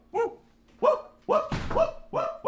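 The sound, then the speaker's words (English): A dog barks loudly, about five sharp barks in a steady rhythm, with a dull thump landing between them midway through; no one speaks. “Ooh, let the dog go.”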